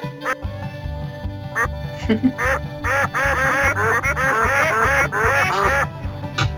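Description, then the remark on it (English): A short musical sting for the "Quack Tracks" segment, built from rapid, repeated duck quacks layered over a bouncy rhythmic beat, loud, lasting several seconds with no talking. “I think the quack tracks, yeah. It's time for...”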